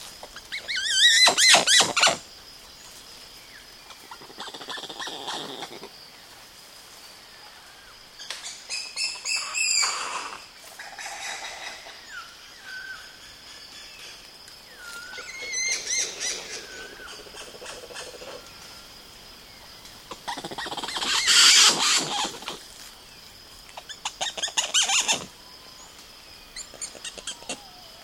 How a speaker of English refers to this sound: Douglas Quinn recorded this bevy of communication among a troop of one of the most charismatic and endangered species in Brazil, the woolly spider monkey.